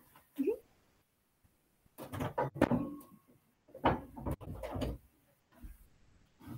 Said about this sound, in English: Hello, buddy. He's scratching at the door. Hold on.